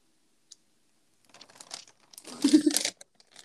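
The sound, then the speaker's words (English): A plastic bag crinkles and rustles in irregular bursts, building to a louder, denser crunch of handling before stopping abruptly, with a few faint ticks afterward. “Oh, because all your little bag noises.”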